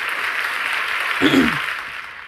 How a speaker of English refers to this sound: And you guys know how I like to give it up. Let's give ourselves a round of applause. Let's go ahead. Let's go ahead and give ourselves a round of applause.